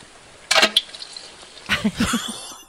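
Sounds from a toilet, recorded when someone was feeling unwell: two short, wet, splashy bursts a moment apart, the second longer and rougher with low throaty tones mixed in, fairly loud.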